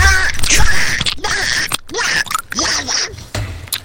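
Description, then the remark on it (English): Someone mimics a tactical gun reload with their mouth, ASMR style, producing breathy hisses, clicks and clacks in several quick bursts separated by brief pauses. “ASMR tactical reload.”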